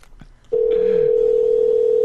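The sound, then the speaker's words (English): A phone rings with a loud, steady electronic tone that cuts in abruptly after a brief quiet moment and holds unbroken to the end. “Is my phone ringing, too?”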